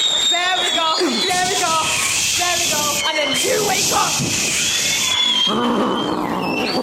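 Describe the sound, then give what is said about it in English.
A group of voices screams together in a loud, sustained, high-pitched din that rises and falls for several seconds, acting out a storm in a skit of Jesus sleeping in the storm, with a person speaking briefly over the commotion. “Okay, the screaming was a lot. That was a lot of screaming.”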